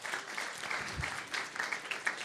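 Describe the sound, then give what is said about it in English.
An audience at Hilltop church claps together in a steady, dense wash of applause, many hands at once with a bright crackling texture that holds at an even level throughout. “It's okay to clap at Hilltop.”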